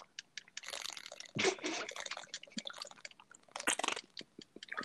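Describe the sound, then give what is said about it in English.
Someone drinks water, with wet sips, gulps and swallowing clicks mixed with crinkly handling noises, a few louder bursts standing out over a few seconds, no talking. “Okay, so I need to drink water. I'm dry.”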